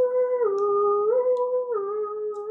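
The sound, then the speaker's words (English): Sirens approaching, heard in the distance, wail steadily, the tone stepping back and forth between two pitches in a slow hi-lo pattern, sounding alone at a fairly even, moderate loudness. “Sirens approaching.”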